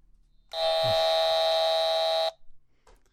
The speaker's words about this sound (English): Where's the buzzer? Yeah, why don't you buzzer yourself?